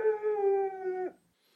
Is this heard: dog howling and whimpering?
yes